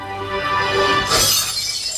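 The window of a 1972 Challenger car smashes with a sudden, loud crash of breaking glass, followed by a bright tinkling spray of shards that lingers briefly; no one speaks.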